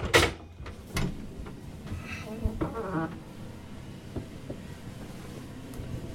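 A heavy watertight door on a ship, leading to the engine room, being opened: a sharp metallic clank, then a thud, a drawn-out creaking squeal of the hinge, and a few lighter knocks, with no talking.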